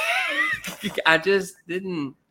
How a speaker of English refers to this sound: That's me yawning watching this movie.